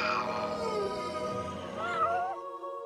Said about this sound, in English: It's just a baby lion cub. Look at its tiny lion paws. They're like little furry apples. Behold, a lone lion cub, the cutest animal in the Serengeti, having a big, adorable stretch.